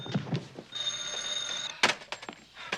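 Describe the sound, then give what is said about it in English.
A telephone rings once with a steady, bright tone lasting about a second, set among soft thumps and handling knocks, fairly quiet. “Now the phone is ringing.”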